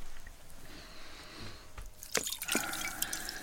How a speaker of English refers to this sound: Now, pour water over my hands.